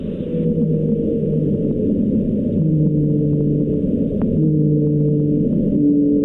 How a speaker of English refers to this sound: It sounds like a whale sound, but it's a lot lower in tone than normal whales would sound. It's actually significantly higher. So it's funny because it sounds so low to us.